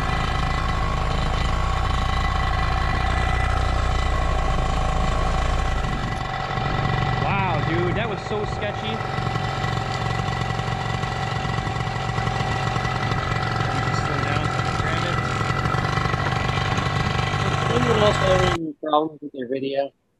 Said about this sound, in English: But only till the engine stops spinning, then you're good.